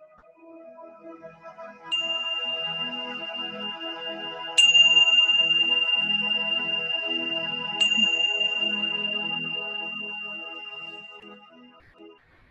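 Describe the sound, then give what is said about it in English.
A meditation chime is struck three times at slow, even intervals to close a loving-kindness meditation, each clear metallic tone ringing out and sustaining over a soft tonal background before slowly fading. “And as I ring my chime, slowly open your eyes and take a moment to notice how you feel.”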